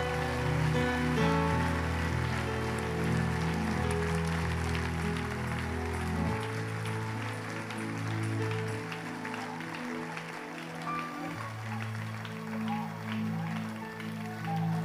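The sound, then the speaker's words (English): A crowd claps their hands to Jesus, a continuous dense crackling patter of many hands, over loud sustained low musical chords that shift every few seconds. “Come on, clap your hands to Jesus.”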